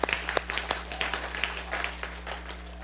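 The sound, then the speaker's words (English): A church audience applauds itself in a steady, dense patter of many hands clapping, moderately loud, with a faint low hum underneath and no one speaking. “And you guys ought to give yourselves a round of applause.”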